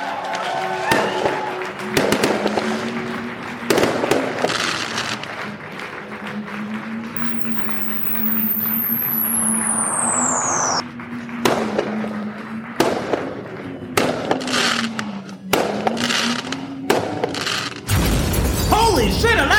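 Fireworks set off on a ship go off in a rapid string of sharp bangs and crackles over a steady low hum, with a high descending whistle streaking through midway and a dense crackling burst at the end.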